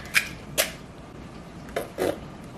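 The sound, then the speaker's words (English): Three eggs are cracked into a bowl holding cake mix: a few sharp taps and cracks spaced irregularly over a couple of seconds, with soft shell-and-splash sounds and no talking. “Now I have to crack 3 eggs into the bowl.”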